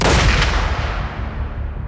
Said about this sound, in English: Suddenly, the crack of a gunshot rolls through the trees. Swaddled by fog but unmistakable, Bonnie looks at Clyde, who is kneeling, ready. Another gunshot echoes from the clearing.